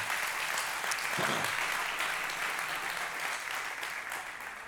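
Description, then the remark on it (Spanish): An audience claps together for Jesus in steady, sustained applause, a dense crackling wash of many hands that holds at an even level for several seconds with no voices on top. “Dar un aplauso a Jesús.”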